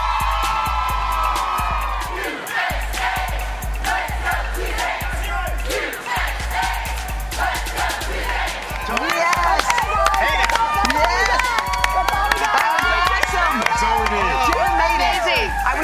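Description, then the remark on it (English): A cheerleading squad performs a cheer for cheerleading on a plaza: a group of voices shouts and chants energetically in unison, punctuated by sharp claps and stomps, with a lively crowd-like din throughout. “Why don't y'all do a little cheer for that?”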